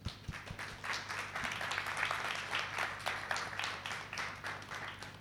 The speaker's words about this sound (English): I'd like to invite up our next guest, and please round of applause for Marcus Scheffer.